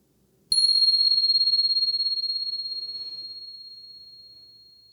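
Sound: meditation bell ringing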